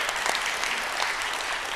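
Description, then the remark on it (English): An audience at a church applauds the upcoming week-long VBS, a dense wash of many hands clapping at an even, sustained level with no voices standing out. “Yeah, round of applause, woo!”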